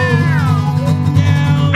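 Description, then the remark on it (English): A person imitates a cat's meow, a drawn-out, wavering vocal whine over a steady low hum, ending with a brief rising squeak. “Oh, like a tuna fish can. Meow, meow.”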